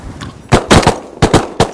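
A rapid volley of loud, sharp shotgun blasts while duck hunting for Eurasian wigeons and teals on an ocean bay, about six or seven in quick clusters, cracking over a faint low rumble of strong wind with no voices.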